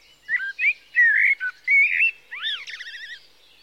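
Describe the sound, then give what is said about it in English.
A bird sings a varied phrase of clear whistled notes, swooping slurs and a rapid warbling trill, heard alone against a quiet background deep in the woods. “I would take long walks in the early morning and again at dusk, and I became captivated by this singer that I kept hearing deep in the woods, and I could never find the bird, but I couldn't get enough of the song.”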